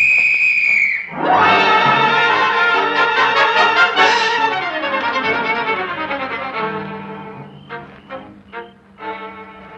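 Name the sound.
police whistle blowing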